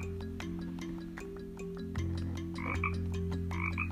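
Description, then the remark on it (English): Frogs croak in a steady, dense chorus of repeated rough calls, with low droning tones underneath and brighter chirping bursts rising toward the end. No one speaks. “Rana, you're right. Rana.”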